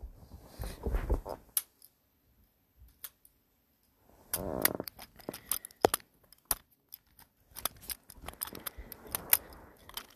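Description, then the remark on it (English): Poker chips click and clack together for ASMR in irregular bursts of sharp taps, with a pause of near-silence partway through before the handling resumes. No one speaks. “Isn't that nice? The clicking sounds.”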